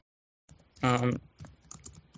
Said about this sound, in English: I'm going to look it up. Give me a second. Just typing really quickly. Yeah, we can hear it. Sorry about that.